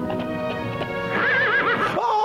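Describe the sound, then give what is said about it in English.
A horse whinnies loudly, a wavering, pitch-sliding neigh lasting about two seconds, with faint clopping and stamping noises underneath at the start. “Like he told the horse, I told you to stop doing that.”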